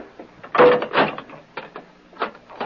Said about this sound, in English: Close and lock the door.